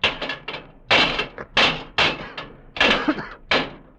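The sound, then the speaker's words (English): Repeated heavy metallic bangs and clanks, about seven or eight irregular impacts with scraping in between, as levers pry and strike the locked brass doors in the base of a monument, loud with no voices. “Those are brass doors in the base, and they're locked.”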